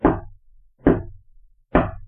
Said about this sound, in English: the moment came where the characters were all sort of discussing what was going on, and then it was, you know, 9:45, and there's a knock at the door.